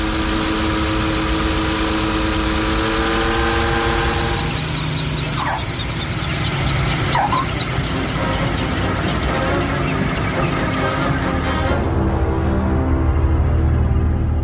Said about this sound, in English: You know, it might be the bass sound, might be Obi-Wan's ship. No one is really going to be able to identify it as a plane, especially after Ben gets done tweaking it out.